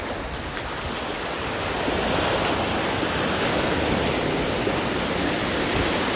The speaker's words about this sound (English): As you may be able to hear, there are some waves in the background. And that's the current status, is listening to these waves.